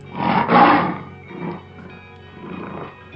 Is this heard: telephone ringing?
no